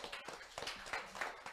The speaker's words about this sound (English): Why don't we give God a hand clap for that?